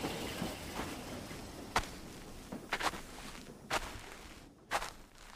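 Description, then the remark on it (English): Footsteps walk at an unhurried pace, each step a distinct crunchy thud against a soft background hiss, about one step per second, moderately loud, with no voices. “They had to walk.”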